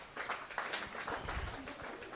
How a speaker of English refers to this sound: Well, let's give these guys a clap as they go to take their seat.